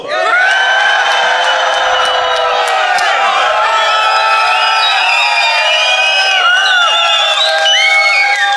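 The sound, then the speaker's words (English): A loud theater crowd at the Helix in Dublin cheers and whoops without pause, many overlapping high-pitched shouts and yells rising and falling over a dense wash of applause-like noise. “What an ornery crowd.”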